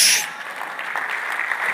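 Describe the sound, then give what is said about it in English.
An audience claps, a dense, steady patter of many hands with a louder burst at the start, then an even, crackling wash that carries on throughout. “In my thought, you're clapping.”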